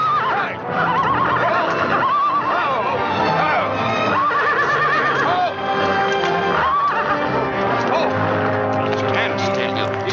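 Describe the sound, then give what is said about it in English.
A horse neighs loudly several times in a row, each whinny a shrill, wavering cry, set against a dense, continuous background of other noise. “He has trouble treating his horse well, is what he has.”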